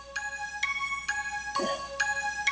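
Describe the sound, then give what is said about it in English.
A bell used in a trivia quiz round dings six times in a steady, quick rhythm, each strike a bright, high ringing tone that sustains until the next one, with no voices. “Yo, my bell was getting lonely.”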